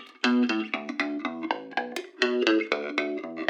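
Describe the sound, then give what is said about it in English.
A gritty synth bass line on the Neutron channel plays steady, rhythmic pulsing notes with a slight drop in pitch midway, loud, with a tiny bit of reverb added in the mix and no voices. “And one thing I love that that Joe did in the mix with your bass line as well, he put a tiny little bit of reverb on the neutron channel.”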